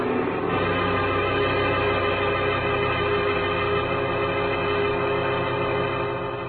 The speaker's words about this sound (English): Well, 40 minutes later, I was about to call off the cloak and dagger routine when I heard the sound of a powerful motor roaring out of Stewart's driveway. I looked up just in time to see a long black Nash whip by with Stewart at the wheel.